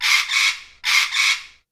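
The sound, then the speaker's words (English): A parrot gives two harsh, squawking calls in quick succession, each a raspy double-pulsed screech, loud with nothing else around it. “A parrot!”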